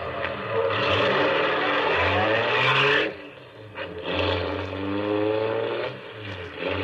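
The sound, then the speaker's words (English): A car engine revs and pulls away, a steady loud roar with a low droning hum whose pitch climbs and shifts for about seven seconds, easing briefly partway through. No one speaks. “I heaved a sigh of relief as we pulled away.”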